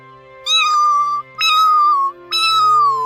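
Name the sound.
cat meowing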